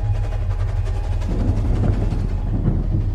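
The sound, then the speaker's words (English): A train roars steadily past, a loud, continuous low rumble with a rattling, clattering texture that holds for the whole stretch and never fades. “As her pains grew more powerful, Alice bit into her pillow to muffle her screams, only daring to expel an audible squeal as the trains roared by.”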